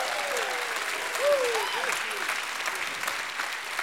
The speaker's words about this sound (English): If you are thankful tonight and you've received that miracle, you ought to give him a hand clap and a shout of praise.